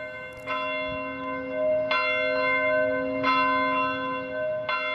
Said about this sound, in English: Yesterday at 2:28 p.m., the city of Buffalo paused as bells from the city's churches tolled to mark 1 year